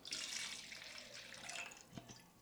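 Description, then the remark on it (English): A drink is poured into an emptied glass as a refill after a toast: a steady, splashy stream of liquid running for about two seconds, with a small clink near the end and no talking. “I'm empty. That's bad luck. You're right. It is bad luck. Pour some more.”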